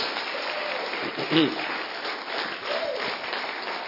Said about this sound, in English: If you are clapping for Jesus, clap very well.